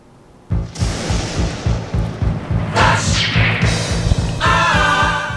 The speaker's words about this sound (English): The lightning and the thunder tell us it is time for flash answers.